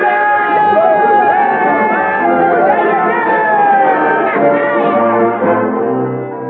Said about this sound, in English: the men broke out in a spontaneous cheer.